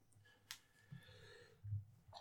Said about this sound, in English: I love the fact that you sneezed all over your fucking hands